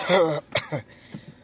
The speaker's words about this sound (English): Hopefully I'm not getting sick. I don't understand what's going on, where this cough came from, because it doesn't feel like anything particularly out of whack.